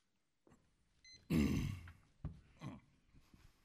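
A loud throat clearing erupts in one harsh rasping burst, followed by a couple of smaller guttural catches and a soft click before the room settles into quiet.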